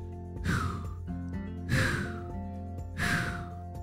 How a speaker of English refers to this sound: … calmed her breathing by breathing 3 deep breaths, which helped her feel a lot better.